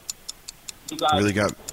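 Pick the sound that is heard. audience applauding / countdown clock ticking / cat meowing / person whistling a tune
countdown clock ticking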